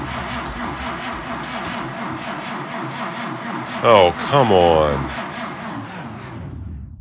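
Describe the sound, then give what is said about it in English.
The engine of an old former police car, a Crown Victoria called Vicky, cranks over and over in a steady, labored rhythm as the key is turned, without catching, loud, while a man briefly exclaims in frustration partway through before the grinding fades out. “I got in and turned the key.”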